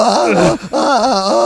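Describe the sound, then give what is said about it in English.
A voice imitates a mournful death wail: two loud, drawn-out wavering moans with a wobbling pitch, split by a brief breath-like break, and no words. “The death wail”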